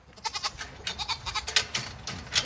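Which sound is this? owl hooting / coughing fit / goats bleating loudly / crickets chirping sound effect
goats bleating loudly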